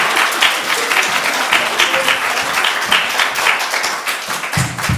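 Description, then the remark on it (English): Steady audience applause fills the space, a dense wash of many hands clapping at once, loud and continuous throughout with no pauses or talking over it. “I'm going to ask you to give a wee round of applause for me.”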